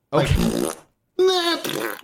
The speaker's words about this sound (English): But no, it goes straight up to just farting sounds.